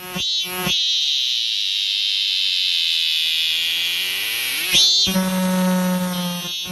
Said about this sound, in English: And I'll play the real cicada to compare with my imitation.